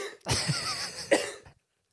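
A burst of harsh, raspy coughing, fairly loud, with a couple of hacking bursts running together over about a second and a half before stopping abruptly.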